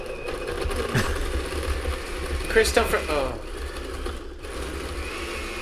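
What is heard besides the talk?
blender running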